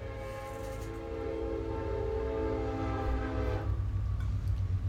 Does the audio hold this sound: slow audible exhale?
no